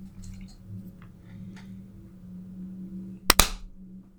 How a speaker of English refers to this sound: I'm making these really feeble claps because half my hand is burned off, and I'm like golf clapping.